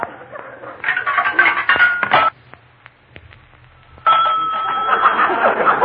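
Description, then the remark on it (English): Metallic chiming from a nickel dropping into a payphone in a private house. Then comes a quiet stretch of sharp, spaced clicks as a dial turns, followed by a steady buzzing line tone. No talking. “A payphone in a private house.”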